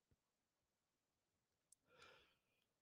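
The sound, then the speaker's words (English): A single sneeze bursts out after a moment of near silence, a short breathy blast that trails off quickly, preceded by a couple of faint clicks. “Oh my God, I never sneeze.”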